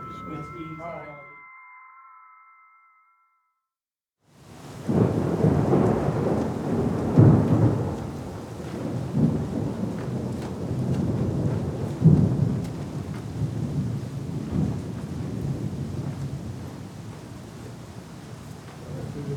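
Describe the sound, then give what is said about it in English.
After a short tonal burst and a moment of silence, a heavy rumble of thunder from an approaching thunderstorm rolls in and keeps grumbling loudly for many seconds, with a rain-like hiss beneath it. “With the thunderstorm approaching, there's time for just one more contact.”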